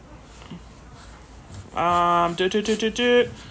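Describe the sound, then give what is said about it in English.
A golden retriever puppy whimpers, one drawn-out whine followed by a quick run of short, high yips, loud. “What kind of dogs? Guys are Goldens.”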